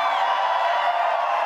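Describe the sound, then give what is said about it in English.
An audience lets out a loud, sustained victory shout, a dense wall of many voices cheering and whooping together without a break. “Anybody know how to give a victory shout?”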